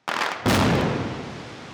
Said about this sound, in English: And then ultimately, after they had gone as far as they could, they did blow up the rest of the dam. So there was the bang, there was the boom.